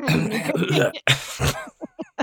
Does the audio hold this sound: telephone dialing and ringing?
no